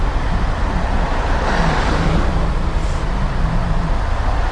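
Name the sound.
road traffic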